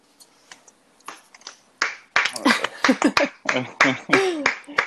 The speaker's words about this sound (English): We could put some candle after in there just so it sounds better, but I actually am clapping for real because I do enjoy that story, and I have read it before, but I did enjoy it.